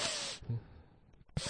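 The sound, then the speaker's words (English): A person imitates a girl's sniffling: two sharp, breathy nasal inhales separated by a short quiet gap, each a brief airy hiss with a low snort-like edge, loud and alone without speech. “And she's just sniffing the whole time.”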